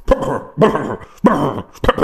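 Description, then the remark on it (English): A dog barks and whimpers at a door in four loud bursts, each about half a second long with short pauses between them. No one speaks. “That's what the dog's doing.”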